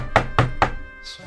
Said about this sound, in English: As you come in the back door, and maybe you're like just starting to take your armor off, you hear a heavy knock at the door.